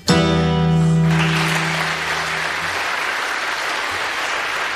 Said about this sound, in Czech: Tak potlesk ten neprekvapí, hlavne pri živých záznamoch a na koncertoch